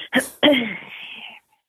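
A man coughs: two quick, sharp hacks followed by a longer, raspy, drawn-out cough that trails off. Fairly loud, with no talking around it.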